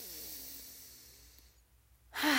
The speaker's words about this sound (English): Take a deep inhale right now with me.